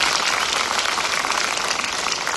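A crowd applauds steadily, many hands clapping at once into a dense, even wash of sound that stays loud throughout with no voices heard. The applause is at a church service, for an audience member's birthday.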